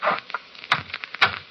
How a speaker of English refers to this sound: Shut the door, Diane. Shut it.